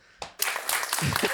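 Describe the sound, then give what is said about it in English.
One person clapping their hands in a quick, steady run of sharp claps, starting with a single clap before the rapid clapping takes over, with a voice faintly mixed in near the end. “That's me clapping. All of those claps are me by myself.”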